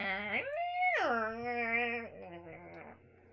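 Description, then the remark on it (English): Someone vocally imitates a dial-up modem connecting: a loud, sustained wailing tone that holds high, swoops down, drones lower for a second, then trails off into a softer, wavering moan. “In what universe is that what your dial-up sounds like?”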